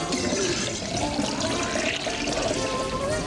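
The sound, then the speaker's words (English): Liquid pours steadily from a jug, a loud splashing gush that runs unbroken for a few seconds with no voices over it. “She's pouring in by the juggler.”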